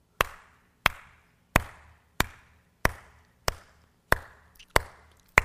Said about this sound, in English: Sometimes in church, you be the only one clapping. But somebody's got to start us.